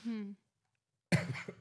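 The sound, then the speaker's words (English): A brief voiced murmur, a moment of silence, then one abrupt cough with a harsh, throaty tail. “Never cough on a podcast, but sometimes you have to.”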